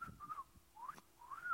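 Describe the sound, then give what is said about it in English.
A person whistles a few short, gliding notes, rising and falling in pitch with brief pauses between, with no talking. “I can't whistle very good.”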